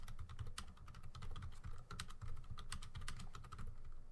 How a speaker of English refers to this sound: I apologize. Just typing in chat.